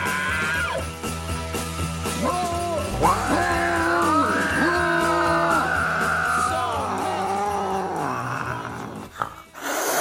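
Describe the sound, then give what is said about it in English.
A domestic house cat (Felis catus) meows in long, drawn-out, wavering cries that rise and fall for several seconds, loud, with a low growling edge and no talking. “The wake and bake animal of the week is the house cat.”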